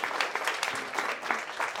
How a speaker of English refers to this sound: So give these two a round of applause. Thank you for coming up.